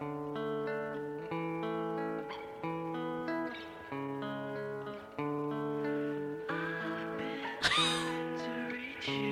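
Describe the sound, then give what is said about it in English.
A lo-fi home recording of a 15- or 16-year-old singing long, held notes drenched in heavy reverb, playing steadily throughout with a brief harsh burst near the end. “That's some nice reverb there.”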